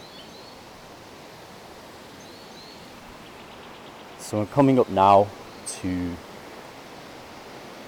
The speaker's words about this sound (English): another little body of water here that meets the Esk.